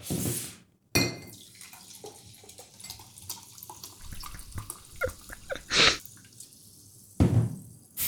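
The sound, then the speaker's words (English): Sparkling water is poured into a glass, with a sharp opening hiss, fizzy crackling and soft glassy clinks and drips. No one speaks. “So now I can pour my sparkling water, right, because we're finished.”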